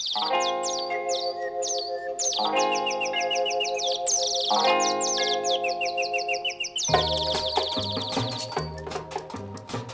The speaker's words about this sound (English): I enjoy the little birdie tweets at the beginning and end of the song.